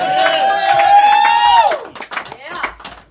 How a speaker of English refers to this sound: Big round of applause for their daddy for fucking making sure they know what real fucking music is.